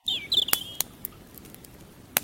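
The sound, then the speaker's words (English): A campfire crackles by a river: a few sharp, sparse pops over a steady soft rush of flowing water, with brief high squeaky whistles near the start. No one speaks. “I hear the campfire.”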